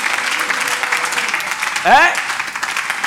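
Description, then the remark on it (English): A church audience claps for Jesus in a steady, dense patter of applause for a few seconds. Around the middle, a single voice cuts through with a short rising whoop or shout. “And give Jesus a clap of faith in the house.”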